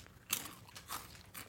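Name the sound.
crunching on a snack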